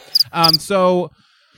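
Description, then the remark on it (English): Two drawn-out, buzzy chirps preceded by a quick high click, a voice mimicking crickets for a silent audience, loud, then near silence with a faint high hiss. “Audience. Crickets. Cricket audience.”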